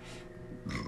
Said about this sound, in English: Do you have to burp, though? My fault. You're so gross.